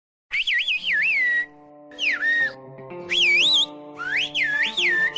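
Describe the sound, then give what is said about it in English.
Whistled speech used to communicate, as on La Gomera in the Canary Islands: four loud bursts of high, sliding whistles that rise and fall like spoken phrases, separated by brief pauses, over a steady low humming, droning backdrop. “Since Roman times, they have whistled to communicate.”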